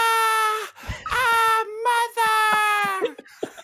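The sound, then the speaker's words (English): A voice imitates a character's scream with three shrill, sustained, wailing bursts, high-pitched and loud, separated by brief gasping pauses. “She did her scream, which you do a very great impression of.”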